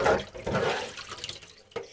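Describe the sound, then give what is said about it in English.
Water is pulled away from a tray holding cyanotype prints, draining in a gurgling rush that gradually thins out and ends with a brief splash near the end. No one speaks. “And now all I need to do is pull the water away.”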